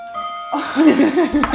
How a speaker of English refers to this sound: Don't mind my antique clock. God, oh, I love it. It's great, but I just don't have to turn the chime off.